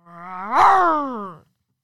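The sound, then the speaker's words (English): A person imitates a tiger's roar, a Tyson Tigers roar, with a single loud, drawn-out growling cry whose pitch rises, swells at its peak, then slides down and cuts off after about a second and a half. “Should we share our best Tiger Roars with our listeners?”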